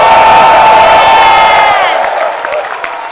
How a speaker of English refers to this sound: Clap your hands and give Jesus a shout.